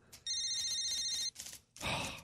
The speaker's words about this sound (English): Hold on, I got a phone call coming in. I got to take this.